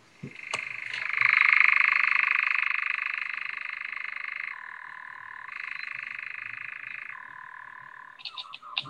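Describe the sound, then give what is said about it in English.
A nightjar's long, steady churring trill runs unbroken for about seven seconds, dropping and rising in pitch a few times, with a few sharp clicks at the start and end and no voices. “you didn't want to do an impersonation of a nightjar, and I don't blame you, because I don't think I could do one these days.”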